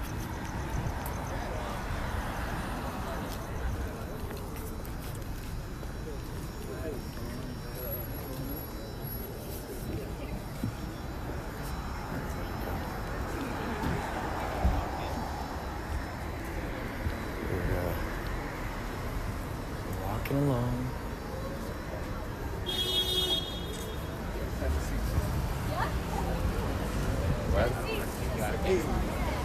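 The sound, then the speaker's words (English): Busy city street ambience in Los Angeles with a steady rumble of traffic, cars passing, pulling in and pulling out, scattered clatters and what sound like footsteps, and voices murmuring in the background. “Okay, we have a whole situation here with cars pulling out, cars pulling in. You never know what's going to happen. Walking through the streets of Los Angeles.”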